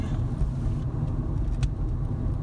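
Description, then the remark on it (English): Steady low rumble of a car driving along the road toward Revelstoke, heard from inside, with continuous engine and road noise and a faint brief tick partway through. “riding in a car”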